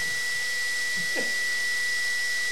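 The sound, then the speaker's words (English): A power drill runs at full speed, giving a steady, loud, high-pitched motor whine that holds unbroken throughout. “There's a drill running at max power.”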